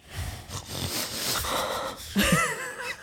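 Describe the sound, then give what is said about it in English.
A person makes wheezy, snorting noises in imitation of a snoring dog, a few rough nasal snorts and raspy breaths, ending with a higher squeaky wheeze. “But maybe I can make like a snort noise to him.”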